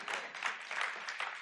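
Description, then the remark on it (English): Audience applause: a dense, steady wash of many hands clapping at once, bright and crackling, holding a fairly even level throughout with no voices over it. “And for those of you that didn't clap, I got two more things to say.”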